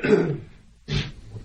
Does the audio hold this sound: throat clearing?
yes